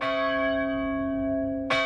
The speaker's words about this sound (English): The bell also rang in the Irish Constitution in the 20s, and apparently it cracked again, and it was recast in 1940. And then it was the bell of Michael's and John's Church until the church was deconsecrated in 1990.